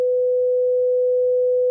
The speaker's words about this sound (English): It's going to be a good long beep.